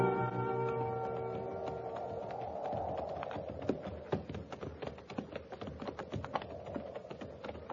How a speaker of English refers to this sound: We'll keep the horses at walk just the same for a while.